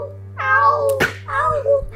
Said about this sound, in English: Oh wait, and the other cat's talking. Hold on a second. The other cat's talking.